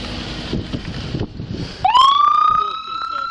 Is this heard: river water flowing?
no